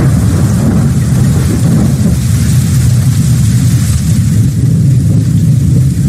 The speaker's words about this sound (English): All right, and as soon as that front door opens, it is storming like hell outside.